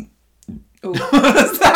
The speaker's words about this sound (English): I'm not cutting out and keeping the burp in because it's just one of them podcasts this week.